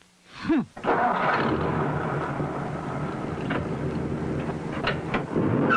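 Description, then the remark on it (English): The big V8 engine of an International Scout cranks briefly, catches, and roars to life, then holds a loud, rumbling idle with slight surges of revving, with no voices. “If you were an international scout, you'd have a big V8 engine and leave the other guys in your dust.”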